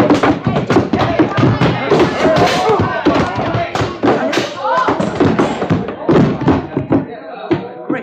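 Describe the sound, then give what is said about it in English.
A loud flurry of heavy punches knocking a man out, dull thuds and smacks in rapid succession amid scuffling and grunting voices, ending with a final blow and a brief hush. “But you knocked him out.”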